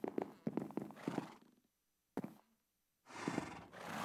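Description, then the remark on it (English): A horse whinnies in rhythmic bursts, then a single hollow hoof thud, followed by another loud, breathy neigh; no one speaks. “you have horses doing the commentary”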